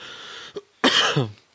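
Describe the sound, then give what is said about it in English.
A single harsh, raspy cough bursts out after a brief throat sound, with a strained, guttural tail; no speech accompanies it. “Sorry, I had a little cough.”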